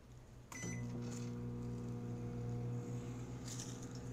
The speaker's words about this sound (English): And well, as you can hear, the microwave is running normally, in spite of the fact that there is metal in this grill.